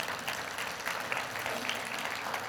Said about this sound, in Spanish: ¿Podemos darle un aplauso fuerte al Señor?